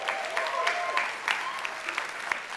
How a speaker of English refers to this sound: Okay, that was a golf clap. Like, I think we can do better than that.